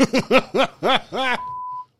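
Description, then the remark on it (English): A burst of rhythmic voiced syllables, like chuckling, cuts straight into a single steady, mid-high censorship bleep over profanity lasting about half a second, then silence. “Nah, you ain't got to beep that shit.”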